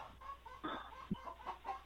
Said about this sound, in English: I'm in a hotel room, but I do have a live chicken here.